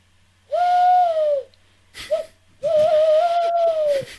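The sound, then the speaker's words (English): A person imitates a male tawny owl's hoot, likely by blowing through cupped hands: a long, breathy, wavering note, a short clipped hoot, then a longer quavering one, loud. “Well, having grown up with you, I am aware that you can do a tawny owl impression.”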